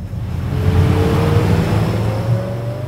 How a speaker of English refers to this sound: A couple miles away, a small boat speeds along the Willamette River.